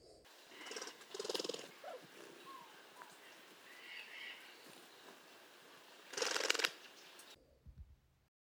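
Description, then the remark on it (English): A dove's wings make a dry, shuffling rattle, like a finger flicked across a fanned deck of cards, in two brief bursts: a softer one early, then a louder one later, over faint steady hiss. “All About Birds describe it as a dry shuffling that sounds almost like running a finger rapidly over a fanned deck of cards.”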